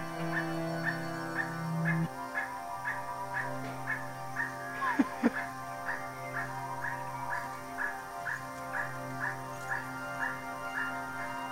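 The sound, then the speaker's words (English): An emerald toucanet at a villa in the jungle calls over and over, a steady series of short, yelping, bark-like notes about two per second, above a constant low hum with a couple of sharp clicks midway. “We found that we can communicate with these birds by replaying the sound of their call.”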